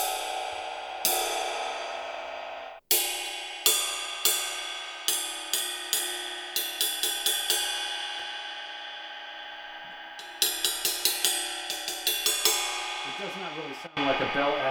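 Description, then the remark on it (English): An asymmetrical cymbal with a large, lumpy bell is struck again and again, some hits spaced out and others in quick clusters, each leaving a bright, shimmering ring with dense overtones that sustains between strikes. “Bell is larger than the other examples I have here, but it is also asymmetrical and it's lumpy, and that essentially dampens the bell and removes it from the bow sound, and that's why the bow sound is so articulated as part of the profile height”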